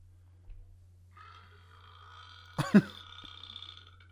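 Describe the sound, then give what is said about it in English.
A dog lets out a single short, guttural burp, fairly loud, rising abruptly out of quiet with a steady low hum and faint background tones. “The dog burps.”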